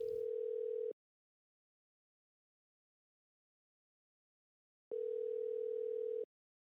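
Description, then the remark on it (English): A steady electronic telephone tone sounds briefly, falls silent for about four seconds, then returns for another second or so, as a phone call is placed to a guest. No one speaks. “Let's get that guy on the phone.”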